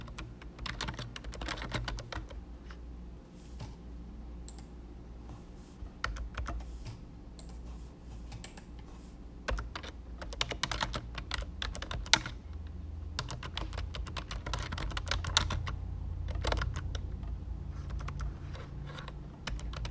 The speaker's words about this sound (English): You hear the typing, it's 'cause I am typing while recording this episode.